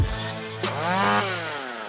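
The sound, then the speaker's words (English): A STIHL chainsaw engine idles, then briefly revs up with a rising, buzzing whine before settling back down, loud with no voices. “You see with the orange on all of their stuff, whether it's a chainsaw or blower, a trimmer.”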